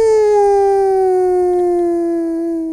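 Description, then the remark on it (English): A person imitates a wolf howl with one long, loud, sustained voiced wail whose pitch slides slowly downward over about three seconds, with no talking alongside it. “Now you can do your wolf cry.”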